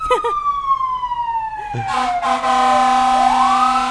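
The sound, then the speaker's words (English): Emergency vehicle sirens wail loudly in the valley on a hot day, one tone sliding steadily downward as another rises in, overlapping and sustained as they pass, with no talking over them. “Yeah, the sirens go off a lot when it's this hot in the valley.”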